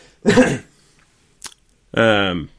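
A person with COVID gives two harsh, throaty coughs separated by a brief pause, with a short clearing sound between them, fairly loud with no talking.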